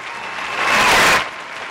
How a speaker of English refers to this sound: Everyone get off your ass and cheer.